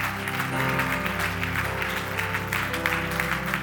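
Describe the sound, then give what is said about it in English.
An audience gives the Lord a clap offering after a prayer, clapping steadily and loudly throughout, a dense wash of many hands over sustained instrumental tones playing underneath. “Come on, let's give the Lord a great clap offering.”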